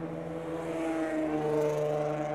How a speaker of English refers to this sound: Wow. That guy has no muffler on that car. That guy has no idea that we're recording a podcast up here.